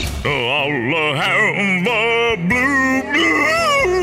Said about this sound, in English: That sounds like my hound dog. It does sound like your dog.